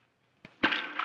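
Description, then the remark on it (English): After a moment of silence, a faint knock is followed by a loud, bright splash as a stone thrown down a mine shaft hits the water below, its hissing spray lingering to the end. No one speaks. “Well, you better throw a stone down in there to make sure there's water.”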